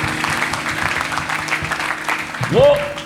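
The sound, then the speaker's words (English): An audience claps in a dense, steady patter for about three seconds, with a voice rising in a drawn-out call over the applause near the end. “Clap and let me know you are with me now.”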